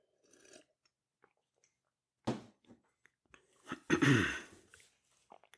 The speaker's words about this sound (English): Excuse me, I'm sorry. Let me get a sip of my beverage.